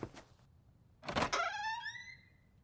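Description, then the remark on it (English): A toilet door opens: a soft knock, a brief pause, then a rough scrape that stretches into a long, rising squeal of hinges, loud and alone with no voices. “Gavin stopped by the first one and opened it.”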